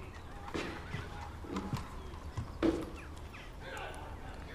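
A horse's hooves clip-clop in a few uneven, hollow knocks, one landing louder than the rest, over a low murmuring background.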